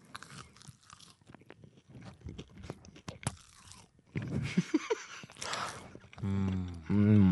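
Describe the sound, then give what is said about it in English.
Loud crunching of crispy Taco Bell naked chicken chips being bitten and chewed, a dense run of sharp crackles over several seconds, followed by brief vocal sounds and a sustained voiced tone at the end. “Oh, that's a good crunch.”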